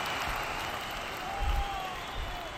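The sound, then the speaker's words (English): A wave of crowd applause, a dense, steady wash of many hands clapping that holds at an even, moderate level throughout, with a couple of soft low thumps underneath. “There's another wave of applause.”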